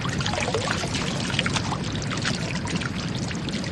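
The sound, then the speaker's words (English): Continuous splashing and churning water, dense and fairly loud throughout, like water being poured or sloshed vigorously, with no voices. “Let's have a little splash party for Pythagoras real quick.”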